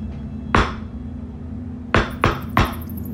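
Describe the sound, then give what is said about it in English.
A man hits something against a door in a rhythmic knock: one sharp knock, a pause, then three quick knocks in a row, each a loud, hard rap over a low steady hum. “He then hits something on the door, sort of like a knocking noise.”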